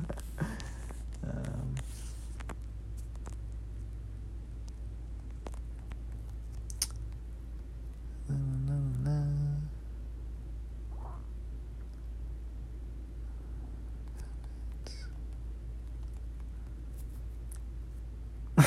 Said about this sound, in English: I'm typing in notes of shit to talk about in my next one.